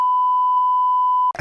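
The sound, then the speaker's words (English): A single long, steady censor beep at a constant high pitch holds loud for over a second, then cuts off abruptly into a brief burst of noisy sound. “Can you insert a long beep for this?”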